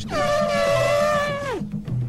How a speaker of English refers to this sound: Well, this is the Elephas Maximus, better known as the elephant. I understand this is the Asiatic variety.